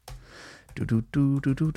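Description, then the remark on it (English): A short burst of typing on a sticky laptop keyboard, soft, with clustered keystrokes, followed by a voice making sounds over the last second. “It still types, more or less.”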